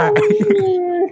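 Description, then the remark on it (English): A person howls like a wolf, one sustained steady tone lasting about a second, fairly loud, with a wavering start before it settles and fades. “Wolf.”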